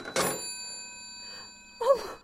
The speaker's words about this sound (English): Oh, why did I hang up the phone like that?